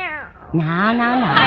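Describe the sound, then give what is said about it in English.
A short falling mew followed by a long, loud, drawn-out meow from Minerva the cat that holds steady before trailing off, with no talking. “Better stop licking your paw. You know what it does to you. Meow.”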